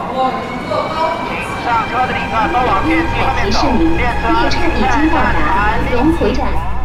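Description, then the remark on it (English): A high-speed train travels toward a rural village in Hunan province, southern China, with a steady, loud rumble and rattling carriages, while indistinct voices murmur throughout. “I think I can take the high-speed train.”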